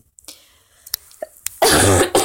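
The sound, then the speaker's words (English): A person with a lingering cough coughs harshly and loudly, quickly followed by a second shorter cough, after a moment of near-quiet with a few faint clicks and breaths. No one speaks. “Excuse me, I have a bit of a cough still.”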